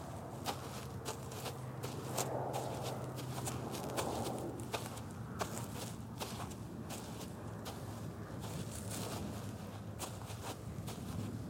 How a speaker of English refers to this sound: After my feeble attempts of defiance, the only sound heard was our footsteps in the snow.